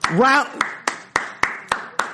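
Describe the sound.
A brief voiced whoop, then six crisp hand claps in a steady, evenly spaced rhythm, fairly loud, each ringing briefly before the next; a round of applause for Patriots player Marcus Cannon.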